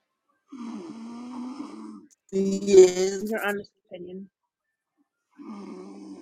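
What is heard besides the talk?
loud snoring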